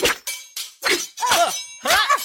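Swords clash about six times in an irregular rhythm, each loud metallic strike leaving a bright ringing tone, with swishing sweeps between the later hits. No one speaks.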